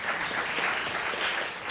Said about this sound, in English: And luckily, California, give yourselves a round of applause.